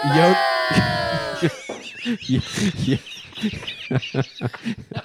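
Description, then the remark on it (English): A loud, shrill pig squeal sound effect rings out for about a second and a half, sliding slightly downward in pitch, followed by people talking. “That's a pig”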